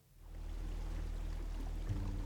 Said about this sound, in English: The engine revs and the boat pulls away from the station.